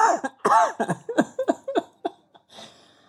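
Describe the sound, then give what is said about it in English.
A loud run of coughing: about eight sharp, throaty bursts in quick succession, some with a rasping voiced edge, tapering off into a soft breathy exhale. “I was about to like sneeze and cough and lose everything.”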